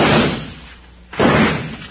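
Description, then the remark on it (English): Two loud, sharp gunshots crack out about a second apart in a Wild Bill Hickok western story, each a broad burst that rings and slowly fades, with a quieter gap between them and no talking. “Good shot, Jingles.”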